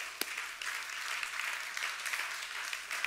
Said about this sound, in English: Come on, somebody give him a hand clap.